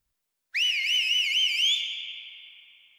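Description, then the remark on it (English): A loud, shrill finger whistle bursts out with a wavering, warbling pitch, then settles into a steady high tone that rings on and slowly fades, echoing off rocky ruins. No one speaks. “Sawyer whistled and it echoed off the rocky ruins.”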